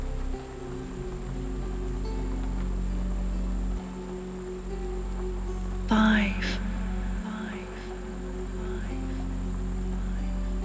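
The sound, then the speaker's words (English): Steady, soft rain falls continuously with a gentle hiss and low background hum, broken briefly midway by a short warbling chirp before the even wash of rain resumes. “All the time, you can still hear the sounds of the rain, and it's like a lullaby singing you off to sleep, so peaceful, so calm, so tired.”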